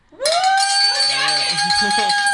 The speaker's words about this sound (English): Well, I have good news because Tony DeMario called and said, "Go Dogs!" and he said, "Pick up the bell because we get to ring it." So pick them up, both. We got two bells. Let's do it.